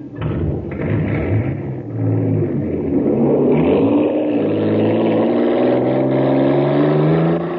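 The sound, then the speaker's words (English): The engine of the Shooting Star, a racer in a jet boat race on Mars, supercharged after being filled with super fuel, revs hard and accelerates, its loud, buzzing roar climbing steadily in pitch over several seconds with a brief dip before surging again. No voices. “Wow, look at the shooting star go.”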